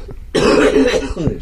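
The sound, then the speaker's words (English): A harsh, raspy cough erupts, a long rough burst followed by a shorter throaty hack, like someone struggling through a coughing fit. “Anyway, help, got another cough.”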